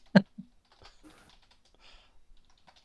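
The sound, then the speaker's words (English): Keys clatter on a computer keyboard: one sharp, loud keystroke, a second quieter tap, then a run of soft, irregular clicks trailing off. “I was just typing in the legendary order.”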